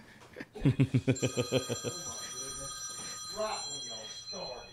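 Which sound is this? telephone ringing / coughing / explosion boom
telephone ringing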